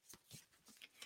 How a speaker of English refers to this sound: I'm just doing a light shuffling right now. This is a brand new deck that I have.